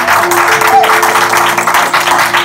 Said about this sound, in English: If you want to clap to Jesus, you can clap louder than that.